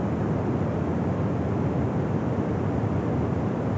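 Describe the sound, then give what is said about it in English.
The Dettifoss waterfall roars without a break, a loud, dense rush of noise weighted toward deep rumbling lows, holding perfectly steady for the whole stretch with no voices. “Right away, you become aware of the constant, loud sound of the waterfall, almost carrying a resemblance to a majestic lion roaring at its full might.”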